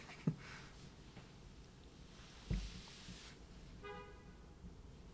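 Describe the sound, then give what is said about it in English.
A car horn blares a steady, fairly loud honk for over a second near the end, over a background of traffic noise, with a couple of dull thumps earlier. “Yeah, I mean, I don't, I get it. You want me to move on, car.”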